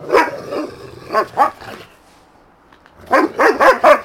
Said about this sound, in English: That's enough. I'm gonna put you back. This is gonna be unlistenable. This is gonna be all dog barking.